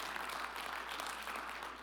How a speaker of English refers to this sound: Woohoo! Clap to the Lord.